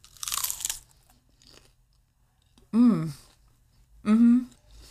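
A loud, crisp crunch of a food critic biting into a fried bite-sized morsel served by a chef, followed by two drawn-out, pleased humming mumbles with a mouth full, clear against a quiet background.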